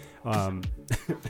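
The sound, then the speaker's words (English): A voiced throaty sound gives way to a few short, rough coughs in quick succession, moderately loud and with no speech. “sorry, so the cough, right?”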